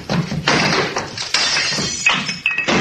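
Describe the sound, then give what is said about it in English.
Glass shatters amid a chaotic scuffle in a living room: bursts of crashing and clattering, with bright ringing shards and tinkling pieces scattering near the end. “Sounds of a scuffle, glass breaking,”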